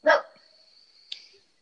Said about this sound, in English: My dog's barking.